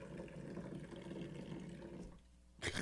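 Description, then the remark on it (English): Hot coffee poured from high up into a cup: a steady, rushing stream of liquid pours for about two seconds, then tapers off into quiet before a short, noisy burst at the very end. No one speaks. “He was just pouring his coffee from a mile in the air.”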